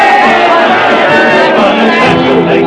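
A loud, dense crowd of English soldiers and an Irishman cheering and shouting together, glad it is over, many voices overlapping in a sustained roar of excitement with no clear words.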